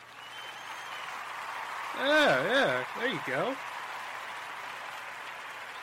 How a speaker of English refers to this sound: Oh, wait, hold up a minute. We gotta clap you in.